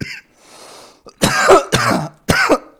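A person with asthma coughs three times in quick succession, harsh and loud, after a short audible intake of breath.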